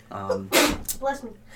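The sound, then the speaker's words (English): A single sharp sneeze: a short voiced intake followed by an abrupt, breathy burst, with brief vocal sounds trailing after it. “Bless you.”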